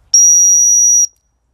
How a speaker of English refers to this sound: And I'm just going to do a quick whistle, because I've lost Blueberry. She came with me, and she went running out the gate.